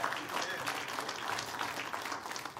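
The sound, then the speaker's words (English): An audience claps steadily as a clap offering to the Lord, a dense wash of many hands applauding at once, fairly loud and sustained for the whole moment without a break. “Would you stand with me and give the Lord a great big clap offering and tell God we love him, we admire him, we adore him.”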